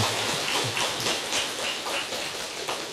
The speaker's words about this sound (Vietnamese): Xin cho một tràng pháo tay tán thán.